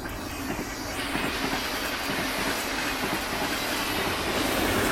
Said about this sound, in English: Fuck, the train comes. I have to put on my hoodie and walk. You guys will probably hear the train. The train moving past.